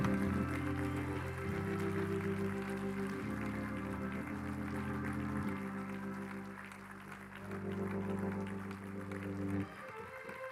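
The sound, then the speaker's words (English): An audience at a church service applauds a preacher steadily for about ten seconds, the dense clapping layered over loud sustained organ chords that shift every few seconds before everything cuts off at the end. “Give him about a 30-second thunderous round of applause.”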